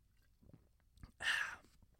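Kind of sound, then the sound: food or drink, sipping beer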